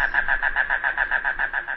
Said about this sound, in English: Today's Talking Birds featured feathered friend, one of the rain crows, Coccyzus minor, the mangrove cuckoo.